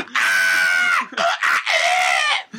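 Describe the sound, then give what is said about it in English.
A voice imitates a shrieking monkey: three loud, high, strained screeches in quick succession, the first long and sustained, the others shorter, with no other talk. “What do you think, Monkey? Monkey's just screaming.”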